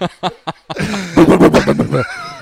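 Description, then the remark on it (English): A voice imitates a Harley motorcycle cold start: a few quick sputtering pops, then a loud, rough, revving drone that rumbles on for about a second before cutting off. “It sounded like a Harley start, a cold start in a Harley.”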